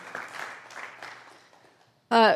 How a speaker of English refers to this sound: And I kind of feel like we at least deserve a pat on the back or a round of applause, because that's been a lot of time in the Beatitudes. Yay, you.